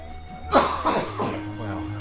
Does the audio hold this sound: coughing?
yes